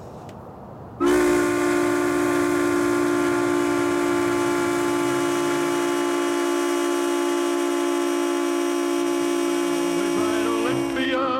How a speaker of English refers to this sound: I'm really glad you have earplugs. It's close to 10 a.m. as I climb the ladder up to the valve handle of the old Olympia Brewing Company whistle.